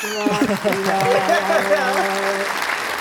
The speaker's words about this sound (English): You know, applause backed by a sad trombone is really the best thing I could have hoped for. It worked, for sure.